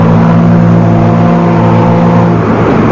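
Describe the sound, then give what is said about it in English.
A riverboat's engine drones steadily as the vessel moves out into the stream, a loud, continuous mechanical rumble with humming low tones that shift slightly near the end. No voices. “The majestic boat moves out into the stream.”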